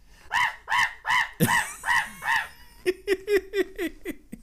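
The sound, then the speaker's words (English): A person imitates a monkey's call, giving a run of loud, harsh, arching hoots followed by a quicker series of short, clipped barks, with no other talking. “Yeah, that was pitch perfect to what this fucking monkey sounds like.”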